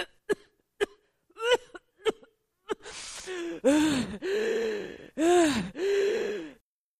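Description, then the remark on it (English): A voice imitates a sick man's fit at night as he reaches for the button to call the nurse: about five short, sharp coughs in quick succession, then a series of long, strained, wheezing gasps for breath, fairly loud. “And he listened and he turned his head and he looked over and he was coughing and he was gasping and he was reaching for the button to call the nurse.”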